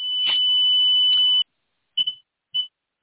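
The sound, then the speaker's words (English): Pure electronic tones at chakra frequencies: a sustained, piercing high tone holds for over a second, cuts off, then three short beeps follow at uneven intervals. Clear and fairly loud, with no voices. “Those were the chakra frequencies.”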